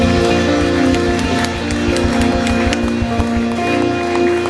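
crowd, audience applause and cheering

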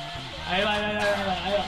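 animal, goat bleating

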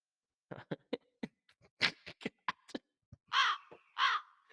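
bird, crows cawing

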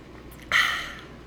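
human body sound, sipping water

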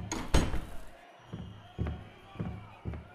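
household object, door being closed

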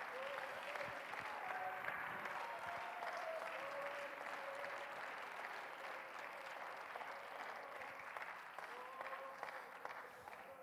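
crowd, audience clapping and shouting

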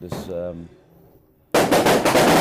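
sound effect, fireworks popping

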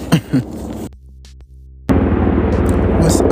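vehicle, helicopter flying overhead

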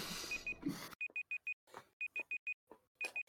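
signal or alarm, timer beeping

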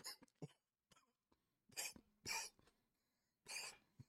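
human body sound, cough

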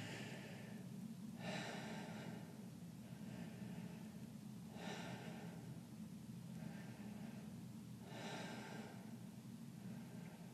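human body sound, deep rhythmic breathing

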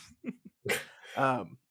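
animal, dog barking outside

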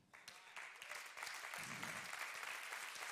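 crowd, audience clapping

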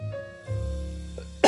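human body sound, cough

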